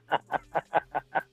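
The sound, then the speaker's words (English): A small female Pomeranian dog makes quick, chicken-like clucking sounds: six short, even pulses in a steady rhythm, fairly soft, with no talking. “No, that's my dog. She's a Pomeranian, so she might talk like a chicken.”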